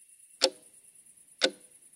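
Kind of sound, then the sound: household object, bedroom clock ticking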